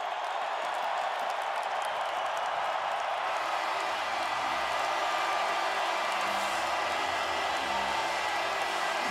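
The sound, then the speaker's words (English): A large hockey arena crowd at Rogers Place in Edmonton cheers at the end of game three of the Oilers-Flames Western Conference semifinal, won 4-1 by Edmonton, in a sustained, dense roar that stays steady and loud throughout, with no one speaking over it. “Crowd will tell you how game three went.”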